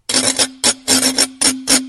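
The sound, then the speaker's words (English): A metal whisk is scraped across a glass washboard to demonstrate washboard playing, quick, rhythmic rasping strokes, bright and loud, with a steady low ringing tone humming beneath them and no voices. “And the glass one with the whisk.”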